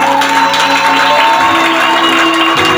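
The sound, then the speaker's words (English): An audience claps for Jesus loudly and steadily, the dense patter of many hands blending with cheering voices, while sustained organ or keyboard tones play underneath. “Can you clap for Jesus?”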